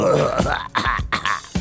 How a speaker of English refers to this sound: Oh, Mike was live while I'm clearing my throat. Excuse me.